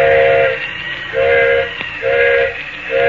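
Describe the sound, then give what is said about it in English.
A steam train engineer blows the whistle to call a flagman, in a repeated pattern of short and long blasts, loud, over a steady hiss of steam and low rumble of the idling engine, as the train stands stopped in the mountains at night. “Engineer's whistling for a flagman.”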